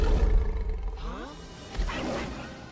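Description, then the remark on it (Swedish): A lion roars loudly, a deep rumbling bellow with a strong low-end growl, followed by a second rough, breathy roar that trails off. “När han vrålar högst. Och det är ingen som någonsin vrålar så högt i filmen som han gör.”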